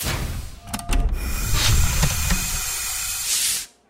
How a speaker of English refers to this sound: I almost smiled at the antique sound of an old-style airlock cycling.